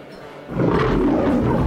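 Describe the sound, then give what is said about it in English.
A lion roars loudly, a deep, rumbling growl that bursts in after a brief quiet moment and holds at full strength to the end. “they have, like, lions that have been stuffed and all that sad stuff. That lion is stuffed over there.”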